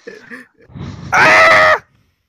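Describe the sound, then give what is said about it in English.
A loud, sustained scream bursts out for over half a second, raspy and strained, after some brief muffled vocal sounds and shuffling. “Do that scream again.”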